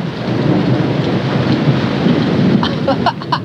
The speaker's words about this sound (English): Now, I suppose, you spoilt little machine, you want to hear what the storm really sounds like. Can you hear?